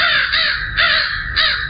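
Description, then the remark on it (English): Three harsh, raspy crow caws in steady succession, loud, each a broad grating burst with no talking over them. “There's a lot of crows pecking at our neck. Crows pecking at our neck.”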